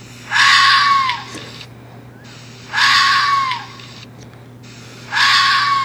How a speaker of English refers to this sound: Huh. Okay, well, that is indeed a scream.